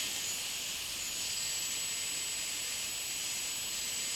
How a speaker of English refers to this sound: It lowers the ultrasound. I choose a frequency I want to hear. From 16,000 to 130,000 hertz. The sound in the background is my computer purring and squeaking. These are sounds I cannot hear normally.